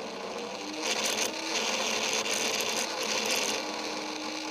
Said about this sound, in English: And what it's doing is it's turning the magnetic field on and off, which in turn spins the magnet that's on this shaft. Pretty cool. Makes a unique sound. Yeah, that's when I get it uncentered so it vibrates too much.